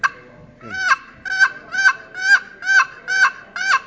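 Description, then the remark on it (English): A walnut box turkey call with a purple heart lid, in the style made famous by Neil Cost, rasps out a steady series of about seven raspy yelps, evenly spaced, imitating a turkey's yelp with no talking over it. “That's the yelp of the turkey.”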